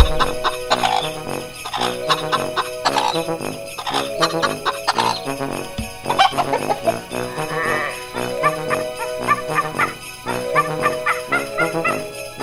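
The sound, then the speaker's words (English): Chickens cluck repeatedly and busily, their choppy calls mixed with a bright, tinkly musical backdrop that plays throughout without pause. No one speaks. “I was going to say we need chickens.”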